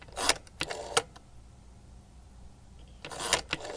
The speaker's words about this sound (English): It's a rotary phone. Yeah, you could. Kids wouldn't know those sounds. These sounds have become obsolete.